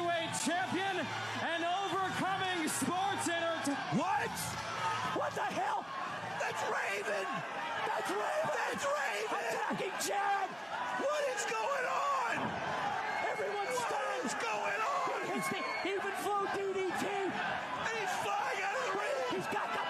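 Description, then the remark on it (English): A large wrestling arena crowd roars continuously at high volume for a wrestler's debut, many voices cheering, whooping, shouting and chanting together in a dense wall of sound that holds steady for the whole stretch. “You could hear the crowd chanting Raven.”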